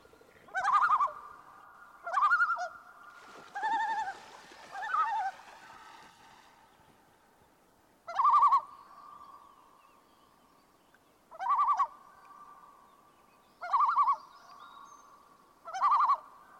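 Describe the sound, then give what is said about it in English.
A common loon gives its tremolo call, a series of quavering, laughing bursts repeated about eight times at uneven intervals, with brief pauses between. Each burst is a loud, wavering mid-pitched warble with no talking. “This next call is the tremolo. It seems to be used to express alarm or distress.”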